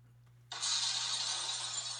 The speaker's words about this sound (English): I don't even know what that was. Sound like a car accident. Someone call 911.